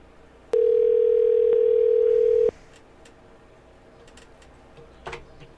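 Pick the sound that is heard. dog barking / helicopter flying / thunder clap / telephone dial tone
telephone dial tone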